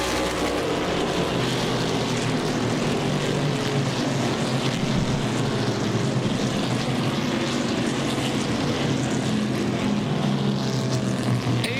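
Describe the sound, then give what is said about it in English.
A dense, steady roar of several vintage Trans-Am race car engines, including a Javelin and a Mustang, running together in a race. It is loud and continuous for the whole stretch, with a low rumbling drone beneath a harsh, buzzing upper layer. “I remember the 70 Trans-Am season well.”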